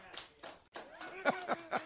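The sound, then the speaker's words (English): Two people in a radio studio clap in a thin, steady rhythm, about seven sharp claps in under two seconds, with a faint murmur of voices or a chuckle underneath. “two people clap for you.”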